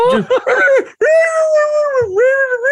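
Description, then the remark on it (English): A person imitates a puppy, starting with a few short yelping whimpers and then holding one long, wavering howl that dips briefly before rising again, loud. “He's at the front window and he's crying and howling.”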